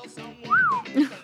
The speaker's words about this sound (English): Oh, wow. We got the whistle.